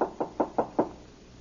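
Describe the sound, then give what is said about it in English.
Five sharp knocks on the open wooden door of a cabin, evenly spaced, followed by quiet with no one answering. “Here's Miss Canyon's cabin. Oh, door's open. I'd better knock anyway.”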